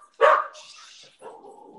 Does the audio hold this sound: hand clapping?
no